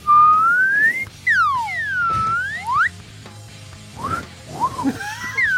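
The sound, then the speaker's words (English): A slide whistle swoops up and down in a series of loud pitch glides, rising and falling several times before trailing off into softer, shorter slides. “I think the only appropriate way to end this is with the sound of a slide whistle.”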